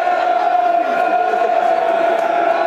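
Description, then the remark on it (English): A football crowd at a match involving Bristol roars steadily in support of their team, a dense, sustained wash of chanting and cheering with a prominent held tone running through it, loud and continuous without a break. “Crowd trying to get behind their 11.”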